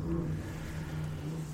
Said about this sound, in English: Is that a motorcycle?